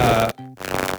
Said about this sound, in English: is that you snoring?